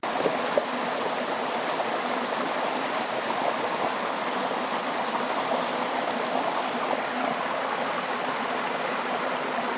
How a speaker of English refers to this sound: Do you know what that was? It was a waterfall. That's a bit tricky, isn't it? The water splashing over the rocks.